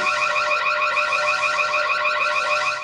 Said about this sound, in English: Okay, so I will leak, I will launch the alarm and you will say it again, just to be sure that everybody listen to it and understood this, okay?